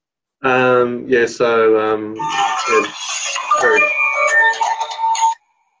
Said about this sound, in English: got a phone call.